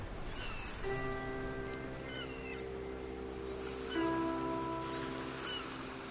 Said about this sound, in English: You'll hear that noise there, you know, the noise of the sea and birds. And you woke up in the morning and by the noise you could tell how heavy the sea was, you know, whether it was good or bad.